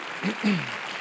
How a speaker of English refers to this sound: Clap your hands unto the Lord, everybody in the room.